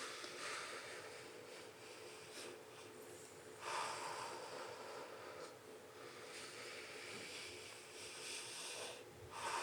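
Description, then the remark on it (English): Slow, deep breaths drawn in and pushed out, airy and whooshing, repeating in a steady rhythm, fairly soft, with no one talking. “All the way in, all the way out.”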